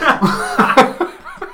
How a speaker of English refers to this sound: I would definitely shake your hand, but I just coughed in mine, and I know it's going to creep you out for the rest of the night.